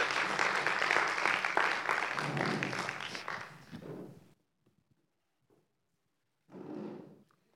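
An audience breaks into loud, dense applause for the actors that rolls on for about four seconds before dying away, followed by near silence and a short burst of sound near the end.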